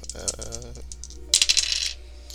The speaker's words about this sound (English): 22. Man, what is with these double numbers? These die are magical.